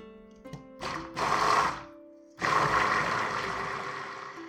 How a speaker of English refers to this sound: So get your immersion blender out, submerge it into your oil and get out the bubbles, and then pour your lye into your oil mixture. And now you know what to do. Start blending.